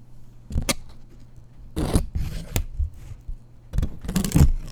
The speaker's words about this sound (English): Okay, that was me just moving the paper over the microphone.